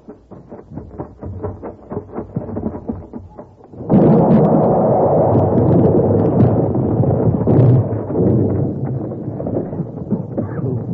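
A dynamite blast set off with a short fuse erupts suddenly after a few seconds of soft rhythmic tapping, then a loud, heavy rumble rolls on and slowly settles for several seconds.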